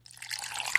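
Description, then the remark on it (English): A peeing sound effect: a steady stream of liquid trickles and splashes, a bright, fizzy hiss building slightly louder over under a second, with a faint low hum underneath and no voices. “it makes it look like you went to the bathroom and you're peeing.”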